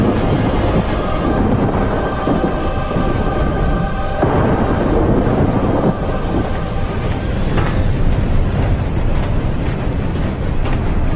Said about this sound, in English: There's a storm and we need to...